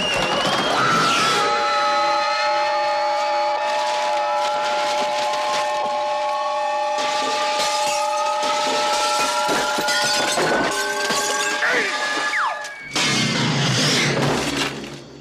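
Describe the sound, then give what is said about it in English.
A cartoon character, after a swig of whiskey, lets out a long, piercing shriek like a steam work whistle while changing colors and size, its tone rising slowly for about twelve seconds over a rattling clatter before cutting off abruptly. “It's like he's a work whistle.”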